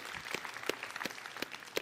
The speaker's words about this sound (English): Yeah, a little clapping and cheering.